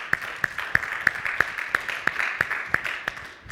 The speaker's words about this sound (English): Thanks a lot, guys. A big round of applause for everybody that helped us worship this morning.